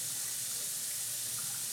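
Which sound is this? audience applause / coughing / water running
water running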